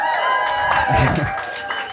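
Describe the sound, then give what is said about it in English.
An audience at a reading event applauds for about two seconds, a dense, steady wash of clapping at full volume, with cheering voices and whoops mixed in over the top. “You like how I just like slid that info in there? You know, get a little gratuitous applause.”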